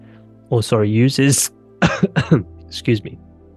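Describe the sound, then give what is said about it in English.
A person clears their throat, then gives a few short, dry, tickly coughs in quick succession from a cough lingering since Christmas, followed by one more small cough. “Still got a little bit of cough from Christmas. It's a bit of a tickly cough.”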